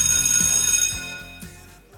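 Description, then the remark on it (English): A school bell at a high school in Burbank rings steadily with a bright, metallic, sustained tone for about two seconds. A low rhythmic pulse runs beneath it, and the ringing fades slightly toward the end. “Marty arrives at school just in time for the bell.”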